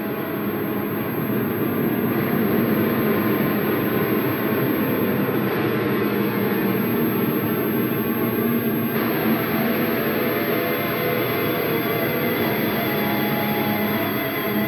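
An eerie, high-pitched ringing tone from a sound art passage in an album track hangs steadily over a dense, loud rumbling drone, unchanging for the whole stretch, with no voices.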